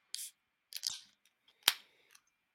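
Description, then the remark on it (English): A beer can cracks open: a sharp metallic click and a short fizzy hiss, then another crisp pop and a faint tick afterward. There is no talking. “And mine doesn't sound as good because it's a bottle. It's a can.”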